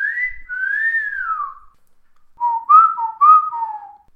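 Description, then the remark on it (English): A person whistles alone and clearly: first a long sliding wolf whistle that rises and then falls, and after a short pause a quicker run of warbling whistled notes. “Give us a wolf whistle. Give us your finest wolf whistle now.”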